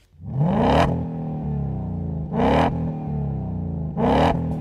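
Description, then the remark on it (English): A car engine revs three times through a MagnaFlow TrueX muffler module, a straight-through design muffler with a perforated X pipe in the center. Each rev climbs in pitch to a loud, raspy peak before dropping back to a steady, deep idle rumble. No one speaks. “Now, this incorporates a straight-through design muffler that has our perforated X pipe in the center.”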